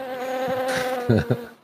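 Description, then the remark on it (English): A steady, continuous buzzing drone like bees hums in the background throughout, even in level, with a couple of brief louder low bumps near the end before it fades. “Thank you for the bee sounds. It kind of sounds like insect too.”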